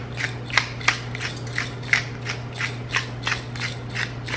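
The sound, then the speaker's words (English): A pepper grinder cranks in a quick, irregular series of crisp clicking crunches, about a dozen gritty ratcheting bursts over a low steady hum, with no one speaking. “This is fine sea salt, Celtic salt, and freshly ground pepper.”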